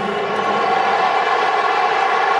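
crowd, stadium crowd booing

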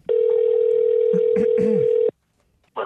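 signal or alarm, telephone call ringing out

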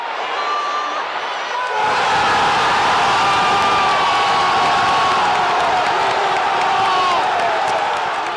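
crowd, stadium crowd cheering

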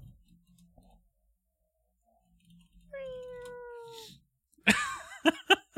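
animal, cat meowing

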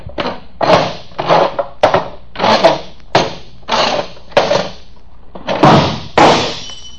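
sound effect, chair scraping

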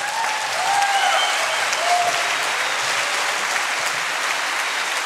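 crowd, audience applause

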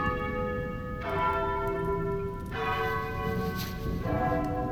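household object, doorbell ringing

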